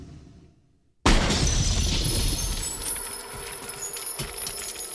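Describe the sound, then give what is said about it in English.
In the film Terminator 2, the T-1000, frozen by a truck full of liquid nitrogen, is blown apart by Schwarzenegger: after a second of near silence it shatters in a sudden loud burst, followed by a long, dense cascade of tinkling, glassy fragments that slowly thins out. “And the beginning of this sequence also gives Schwarzenegger another one of his most famous movie moments when he blows apart the T-1000, who has been frozen by a truck full of liquid nitrogen.”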